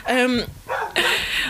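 Dogs bark in a couple of loud, sharp bursts, a tonal yelp followed by harsher, noisier barks in quick succession.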